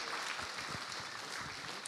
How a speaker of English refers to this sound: Thank you. Give them a clap.